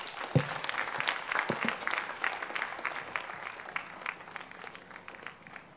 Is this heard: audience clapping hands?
yes